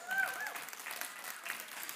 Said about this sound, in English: And the reason that people are applauding is because when he left here, there was only a certain water and yams and venison.